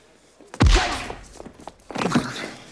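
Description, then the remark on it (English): A single loud, deep punch knocks a man out in a movie scene with Busey, landing with a heavy thud, followed by shuffling and scuffling noises and a second rough burst of movement toward the end. “Knocks him the fuck out. Punches him out.”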